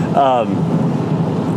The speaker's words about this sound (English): and you have to forgive me, it's raining real hard. It didn't look like it was going to be raining this hard.